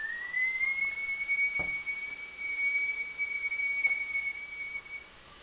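A whistling kettle in a kitchen shrills, its high tone sliding up slightly at first and then holding steady for about five seconds over a low hiss, with a couple of faint knocks before it cuts off.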